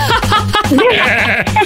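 A goat, one of Kevin Bacon's goats, bleats loudly in a string of quavering, wobbly cries, several bleats running together with brief breaks between them and no talking.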